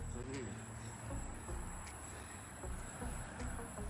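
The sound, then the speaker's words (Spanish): A dense, steady hum of many bees buzzing around hives, continuous with a low droning texture and no clear pauses across the whole stretch. “Miren cómo están aquí las abejas.”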